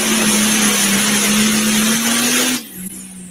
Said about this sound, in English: But fans, that's a 5-inch pro stock. Those sound awesome.